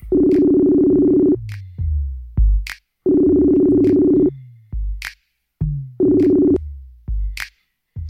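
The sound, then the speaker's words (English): A phone being dialed to call a guest rings three times, each buzzy tone lasting over a second, with short falling blips and clicks filling the gaps between rings. No one speaks. “So let's dial him up right now. Let's see if he answers up the phone.”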